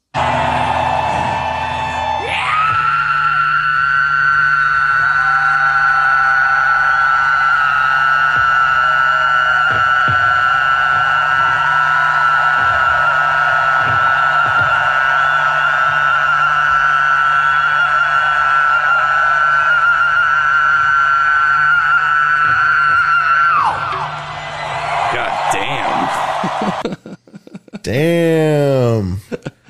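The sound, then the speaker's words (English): A single loud scream held at a steady, piercing pitch for over twenty seconds, part of a played music recording, ending abruptly into a brief burst of other noise. “And it sounds like it's a scream.”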